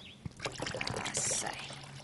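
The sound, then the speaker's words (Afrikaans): About 1.5 cups of warm water is poured into half a cup of dishwashing soap, a steady splashing pour lasting about two seconds with a brighter gurgle midway. A voice can be heard faintly alongside it. “Nou goed, by die seep sit jy 1.5 koppie warm water.”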